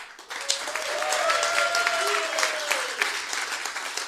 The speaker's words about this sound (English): That was deserving of an applause break, as is the fact that for the first time in University of Dayton basketball program history, Jalen Crutcher is the Atlantic 10 Player of the Week for the second consecutive week.